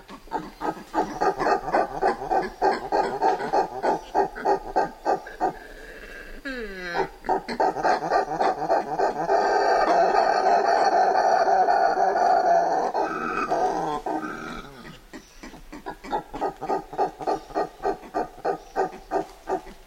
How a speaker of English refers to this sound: Douglas Quinn recorded and then condensed a day in the life of a group of woolly spider monkeys who live near the Caratinga Biological Station in the Atlantic Forest of Brazil.